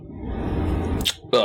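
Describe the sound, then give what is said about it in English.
A voice imitates a long, low, rumbling burp of the character Akmos while chugging a keg of ale, followed by two short, breathy bursts like quick gulps or inhales. “I'm gonna look over at the fact that he burped, continued drinking, and then burped again.”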